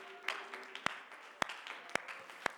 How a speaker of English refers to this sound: Mighty God, can we give the Lord a hand clap of praise tonight?